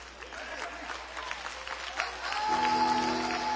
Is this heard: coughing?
no